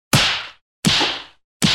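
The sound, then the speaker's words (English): Three sharp, loud slaps around a man's face land in steady succession, each a crisp smack with a short fading tail, spaced under a second apart with silence between and no voices. “I think I'm just going to give him a few more slaps around the face.”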